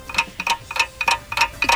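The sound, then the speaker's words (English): A 30-second countdown clock for a quiz round ticks steadily and briskly, about six crisp, slightly ringing ticks in under two seconds, fairly loud with no voices over it. “you have 30 seconds on the clock to tell me everything you know about the American flag.”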